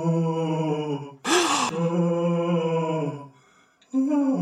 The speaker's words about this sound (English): This is the most ghostly activity we've ever encountered. And it's happening all the time. Listen to this eerie moaning.